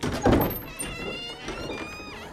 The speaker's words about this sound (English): So she leaves her companions behind and walks up to the door. It opens all on its own.